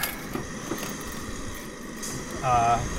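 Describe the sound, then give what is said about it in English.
A steady low rumble with a few clicks, then near the end a truck engine turns over and catches after briefly failing to start, rising into a louder, whining hum. “Didn't turn on for a second there. Then it did.”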